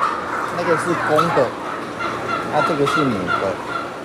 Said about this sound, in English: Turkeys are native to North America, but they've been on Taiwan since the 17th century, brought over by the Dutch, who briefly colonized the island.